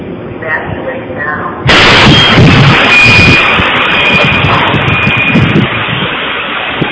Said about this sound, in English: So here it is, and then there's the explosion.